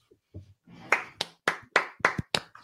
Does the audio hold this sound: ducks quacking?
no